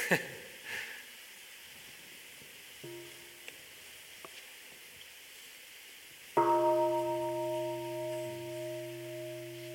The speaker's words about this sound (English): So dear friends, maybe we can listen to a sound of the bell and come back to our breathing.